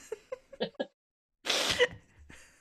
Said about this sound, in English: Are you about to sneeze? No. Great start to the podcast, guys.